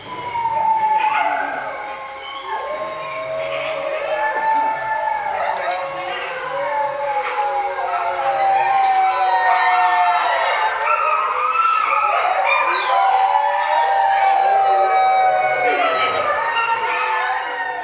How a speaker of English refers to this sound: These wolves were recorded by Brian Wright for the International Wolf Center CD….